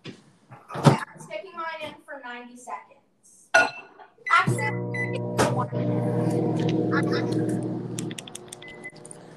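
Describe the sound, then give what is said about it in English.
After a few seconds of talking, a dish clunks into a microwave, the door knocks shut, and the microwave, set for 90 seconds, gives a steady electric hum for several seconds before cutting off. “So I'm going to stick mine in the microwave right now and set it for...”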